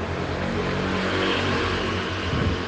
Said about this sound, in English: Cue the loud motorbike.